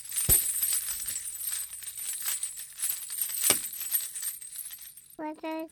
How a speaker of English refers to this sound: Do you want to shake your bells? Yeah.